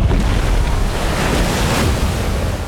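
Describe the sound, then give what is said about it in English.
Loud, continuous ocean waves crash and churn, a dense roar of surf with gusty wind noise buffeting the microphone throughout. “Massive waves erupted, like watery claws pulling at the beast's frame.”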